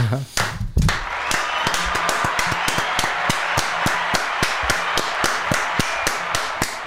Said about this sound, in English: Yes. Slow clap, fuck you guys.